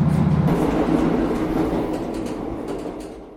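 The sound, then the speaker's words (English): A train rumbles past at Dalmally station on a sunny November day, a loud, steady low roar with rattling wheel noise that slowly fades as it moves away; no voices. “had to wait, kind of wave the train past us before walking across the line, which was the latest memorable part of a very memorable journey.”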